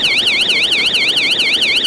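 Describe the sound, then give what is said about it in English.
A piercing, high-pitched emergency exit door alarm at a New York subway turnstile, set off when someone bangs open the emergency door, wails loudly in a fast, steady warble, repeating its rising-falling sweep several times a second with no voices. “So, inevitably, someone bangs open that emergency door, and boom!”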